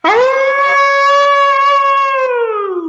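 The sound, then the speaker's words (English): A person imitates a hound dog's howl: one long, loud wail that swoops up at the start, holds steady for about three seconds, then sags slightly as it fades. “this is where you get to close us out with your best old hound dog howl.”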